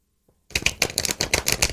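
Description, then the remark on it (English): A deck of cards being shuffled: after a brief silence, a fast, crisp run of papery clicks and flutters rattles on steadily for over a second, with no voices. “You can shuffle any way you want.”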